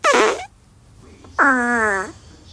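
Two loud farts separated by a short pause: a brief buzzy one, then a longer, tonal, squeaky one that slides downward in pitch before cutting off.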